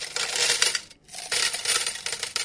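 Coins tumbling and clinking together in a bright, busy metallic jangle, with a brief pause midway before another shower of jingling coins, fairly loud with no voices.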